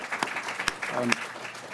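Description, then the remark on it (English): An audience at a panel event applauds the event's organizer in a steady, dense patter of many hands, with a few sharper individual claps standing out above the wash of applause. “So I at least want to get a round of applause”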